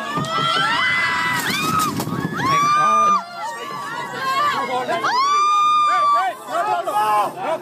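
A crowd of ship passengers screams in terror as lifeboats are lowered, one dropped too quickly and turning over, with overlapping high, wavering shrieks rising and falling over a steady rush of noise and babble, loud throughout with a brief dip in the middle.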